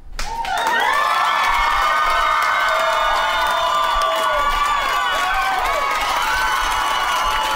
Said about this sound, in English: And look, nothing but white, boomer, asshole Trump supporters in the crowd. And look at them cheer like they just won the goddamn Super Bowl.